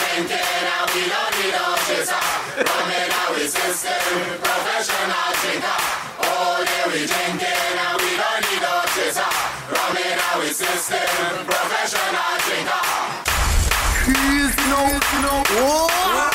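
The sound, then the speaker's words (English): A crowd claps hands in a steady rhythm as an announcer urges everyone to clap, over loud music with voices chanting, and near the end a burst of roaring noise and rising tones swells over everything. “Everybody start clap your hands.”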